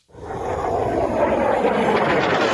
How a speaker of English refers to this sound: Each missile and drone Russia fires carries death as it soars to its target. Everyone intercepted is a triumph of life.